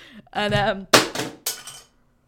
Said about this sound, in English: Sorry, I dropped the phone. Everything's fine.